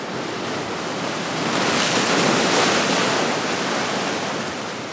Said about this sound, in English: I love to hear the wind rustling in the leaves. And the waves washing up on the lakeshore.